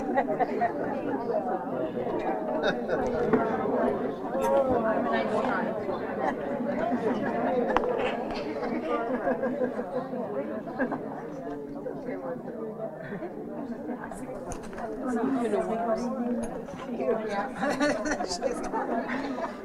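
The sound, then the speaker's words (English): A crowd of audience members chatting all at once as they turn to the people next to them to wish them well, a steady, overlapping murmur of many voices with occasional light chuckles, continuing without pause at moderate loudness. “Why don't you turn to the person or persons next to you and wish them well, or give them a hug, or say something sweet.”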